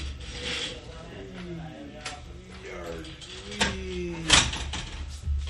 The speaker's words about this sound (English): you want to shut the door? Yeah, shut the door